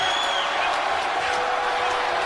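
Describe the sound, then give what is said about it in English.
A crowd boos a performer returning after seven months out with an injury, a loud, continuous wash of many voices with a low droning hum running through it, sustained for a couple of seconds without a break. “Still, immediately comes back and still gets booed, which I love.”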